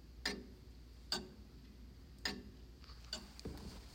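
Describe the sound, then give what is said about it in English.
An antique mechanical clock, built in 1883 and restored in 1970, ticks with sharp, evenly spaced clicks about once a second, clear against a quiet background, with a few fainter clicks near the end. “And this is a aged and worn handwritten note taped on the inner casing of the clock, and you can hear it tick.”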